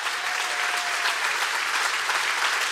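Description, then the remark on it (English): Sustained church audience applause for the volunteers, a dense steady wash of many hands clapping at an even, fairly loud level throughout, with no voices standing out. “They deserve a bigger hand clap than any TV preacher who can walk in behind a pulpit.”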